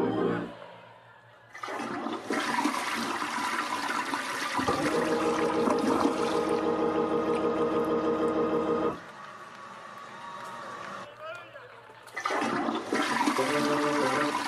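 A toilet flushes, a loud rushing roar of water that churns for several seconds and then falls away, followed by a second shorter surge of flushing at the end.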